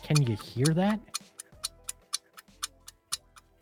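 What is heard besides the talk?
clock ticking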